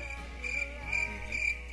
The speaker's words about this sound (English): I got crickets for a cricket joke.